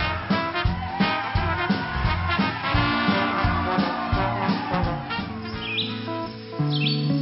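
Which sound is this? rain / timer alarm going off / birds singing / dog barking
birds singing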